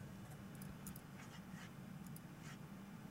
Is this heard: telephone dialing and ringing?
no